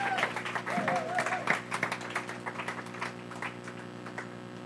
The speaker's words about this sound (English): So let's give them a massive round of applause as they come up.